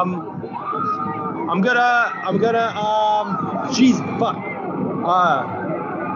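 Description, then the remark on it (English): A rioting crowd shouts and yells in a loud, chaotic clamor during a riot while a bunch of people flip over a police car, with many overlapping raised voices and no clear metal crash standing out. “There's a bunch of people flipping over a cop car at the moment.”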